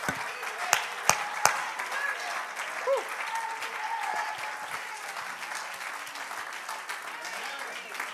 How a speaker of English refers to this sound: Won't we just clap our hands and magnify him just for a moment?